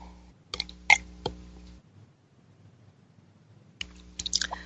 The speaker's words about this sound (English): Excuse me one second. And take a sip of my spiritual espresso.